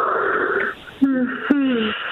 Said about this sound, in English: Okay, this is how I yawn. It's not crazy or anything.